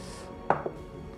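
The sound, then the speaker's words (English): Dice rolled for a death saving throw hit a hard tabletop: one sharp clack, then a quieter second knock a moment later as they settle. No voices, only a faint background hum. “Oh, this dice has given me so much luck in the past. This is a death saving throw.”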